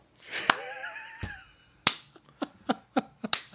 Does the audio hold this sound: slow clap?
yes